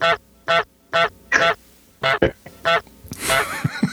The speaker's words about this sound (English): Obviously, Nick had a goose.